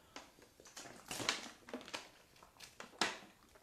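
Someone takes a quick sip of water: soft plastic crinkling and a few sharp clicks and slurpy bursts, quiet overall, with no talking.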